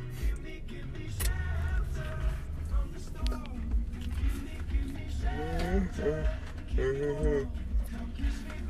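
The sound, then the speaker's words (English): A song with a sung vocal plays from a car stereo over a steady low engine rumble, the melody rising and bending in a few drawn-out phrases at moderate volume. “Okay, have I heard this song like outside of your car, or is it just because you played it?”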